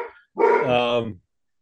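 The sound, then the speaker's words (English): A dog lets out one loud, drawn-out bark right after the tail end of a previous bark, followed by silence. “Is that your dog going off there, Pete?”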